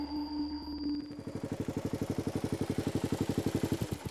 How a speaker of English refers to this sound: This morning, I'm going to hop on the motorcycle and zip over to the Fort Mason Center, dropped by the Long Now Foundation office.